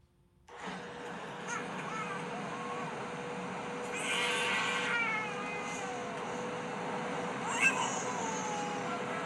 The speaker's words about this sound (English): You know that, you know when they reach screaming, like it's not just crying, like it's like when they're it seems like their head may explode as they scream.